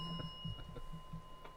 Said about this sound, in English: Okay, hit that bell.